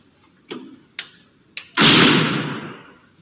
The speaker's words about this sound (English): And the door slams.